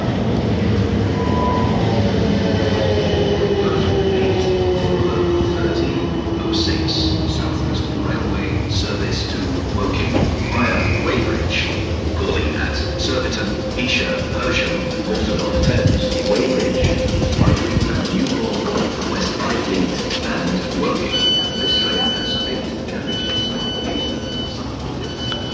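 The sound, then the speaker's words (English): Steady rumble of a train running on rails on a journey back home, heard from inside a carriage, with continuous low-frequency roar, faint squealing tones from the wheels, and occasional rattles and clanks throughout. “I'm on the train back home now.”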